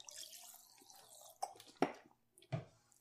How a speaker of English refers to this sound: And I guess I drink some water. I'm really thirsty.